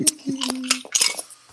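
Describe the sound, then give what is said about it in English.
Dice rolled for initiative clatter across a hard surface in a quick burst of sharp, bright clicks and taps over about a second and a half, then settle. A brief low ringing tone runs under the early clicks. “I'm going to switch out my dice. Okay. These seem to have soured. I just rolled a natural one.”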